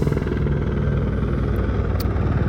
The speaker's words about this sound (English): You guys hear the helicopter? It's BS, you know? It's fucking up my rhythm. They're probably looking for a missing person.